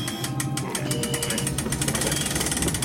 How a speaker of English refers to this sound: I'll raise the door manually.